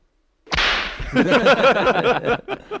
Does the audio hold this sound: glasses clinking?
no